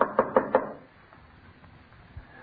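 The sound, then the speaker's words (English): Four quick, firm knocks on the wooden front door of a house in a fast, even burst, followed by quiet with only faint background noise. “Where's that blasted bell? Oh, it was out of order when I was here. I had to knock.”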